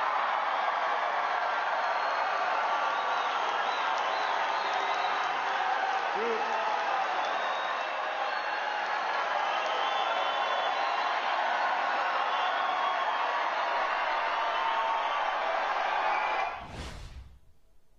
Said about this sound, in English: As you could tell, there were a lot of people screaming for that applause line.